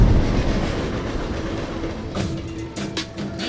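A freight train rumbles past, a loud steady roar of wheels on rails with sharp clacking bursts toward the end and a faint metallic whine underneath.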